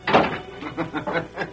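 household object, door closing

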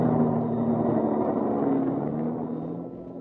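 vehicle, taxi cab pulling up

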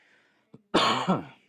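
human body sound, hacking cough

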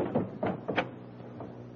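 household object, door being opened

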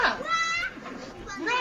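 animal, goat bleating sound effect

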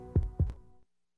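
sound effect, heartbeat sound effect

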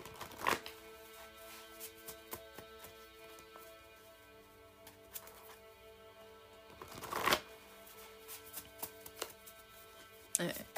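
household object, shuffling tarot cards

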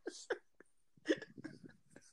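human body sound, hiccup

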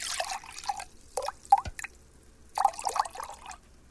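nature, rain dripping

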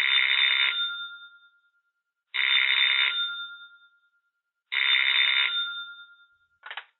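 household object, telephone ringing

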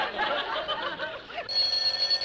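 household object, telephone ringing

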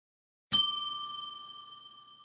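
signal or alarm, bell being rung

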